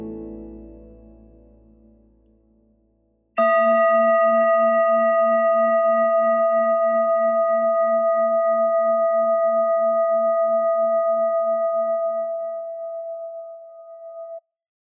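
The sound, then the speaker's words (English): A bell is struck once and rings on in a clear, steady tone with a low wavering hum beneath, slowly fading over about ten seconds. A softer lower tone dies away just before the strike. “I ring this bell to awaken you to the divine presence that's within you and to center you so you can feel the blessings of Divine Mother, of Spirit of God.”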